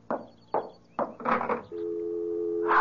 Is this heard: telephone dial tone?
yes